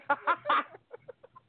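Chickens cluck: three loud, squawky calls in quick succession, followed by a run of softer, shorter clucks that fade away.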